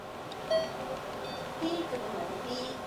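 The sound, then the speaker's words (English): A short electronic beep sounds early on, followed by a lower, slightly longer tone, both fairly faint against a steady low hum, in a hospital as the last bag of a chemotherapy infusion finishes. “You hear that beep?”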